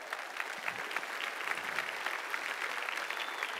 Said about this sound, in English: And I'm going to call these guys up this morning. Give these guys a big hand as they're coming up.